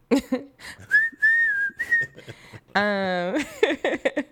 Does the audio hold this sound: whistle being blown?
yes